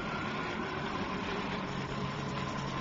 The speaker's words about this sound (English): Helicopter!